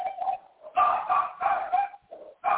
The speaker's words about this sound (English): I have competition back there. Do you have a dog now?